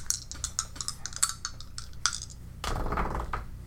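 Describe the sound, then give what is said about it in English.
Dice clatter across a hard tabletop in a quick run of sharp clicks, followed by a denser rattling tumble before settling, rolled for a quality check in a tabletop game and coming up 11. No one speaks. “So, what I think we're gonna do again is we're gonna roll her quality again, okay, to see if she catches it in time or if she catches a bolt.”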